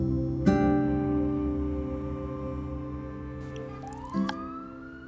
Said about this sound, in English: Sirens are already kicking off today, this morning, here on Friday, the 13th of September, 2019.